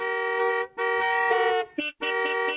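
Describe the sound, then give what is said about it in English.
Loud taxi car horns blare in long sustained blasts, four honks in quick succession with short gaps between, dominating the scene with no talking. “He made a decision one day that the taxi drivers were not to honk their horns from tomorrow.”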